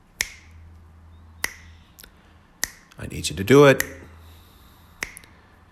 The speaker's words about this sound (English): All right, I need you to snap your fingers on this beat. Here we go.